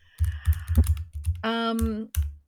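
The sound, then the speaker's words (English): Loud clacking of a mechanical keyboard, keystrokes landing in quick irregular bursts, with a brief humming tone partway through before the typing resumes. “That was some loud, loud keys in my ears. There you go. Yeah, I have a mechanical keyboard.”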